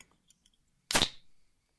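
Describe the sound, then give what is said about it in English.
A can of cider is cracked open: a sharp pop followed by a short burst of fizzing hiss that fades over a fraction of a second, after a few faint ticks of handling. “I'm going to just go and open my cider.”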